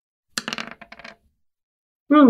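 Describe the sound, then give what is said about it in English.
Two dice clatter and tumble across a hard tabletop in a quick burst of rattling knocks, settling within a second with both showing six; after a short silence, a voice calls out. “Sixes on both of your dice.”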